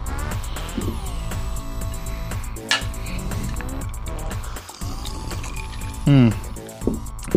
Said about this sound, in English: That's why I asked you to pour me that, because I'm hoping it's going to get rid of the slight headache that I have from that.